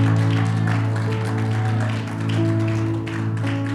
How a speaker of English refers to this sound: Let's give the Lord a hand clap. Somebody started clapping there, man. Yeah.